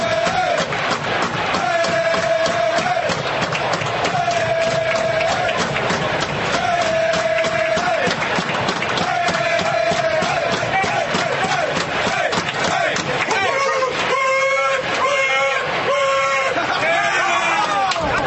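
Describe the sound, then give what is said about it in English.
The Washington Nationals bench erupts in a home run celebration, players acting like they are driving a car and shifting through the gears, a group of men chanting a repeated call in a steady rhythm over loud crowd noise, breaking into sharper rhythmic shouts near the end. “it's the spectacular home run celebration that is happening on the Nationals bench”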